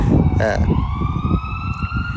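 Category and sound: vehicle, ambulance siren passing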